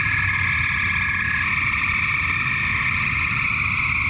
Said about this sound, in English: Well, these are, according to our environmental guru, Hannah, these are spring peepers.